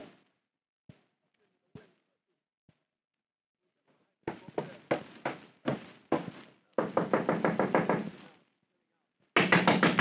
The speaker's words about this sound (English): Girl, come in, don't knock my door down.